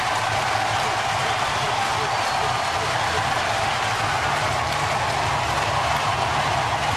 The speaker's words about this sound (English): Albert Pujols has beaten the Cubs back-to-back days. And this crowd is going crazy here at Busch Stadium.